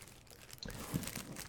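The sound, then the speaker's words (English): A sheet of loose-leaf paper, a list made with pictures from a Walmart catalog, crinkles and rustles, a short burst of dry, crackly handling noise that starts abruptly after a brief quiet moment, with no one speaking. “It looks like we have a piece of loose leaf paper, and Tammy wrote you a list using pictures from the Walmart catalog.”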